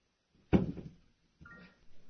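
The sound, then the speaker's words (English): A chair is grabbed and sat down in: a loud wooden thump with a brief rattle, then after a pause a softer scrape with a short creaking squeak. No one speaks. “He dramatically grabbed his chair and sat down.”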